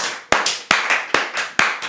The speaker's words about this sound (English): Round of applause.